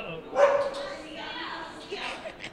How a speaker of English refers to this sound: It's so fun to see him bark with the tail wagging. I know, his tail's wagging, the guy's petting him, he's still like, bow, bow, bow, bow.